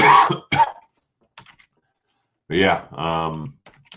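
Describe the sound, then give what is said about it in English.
Two sharp coughs at the start, followed after a pause by a harsh, drawn-out throat clearing, with faint clicking in the quiet gaps between. “Sorry, just putting this in and I have a cough.”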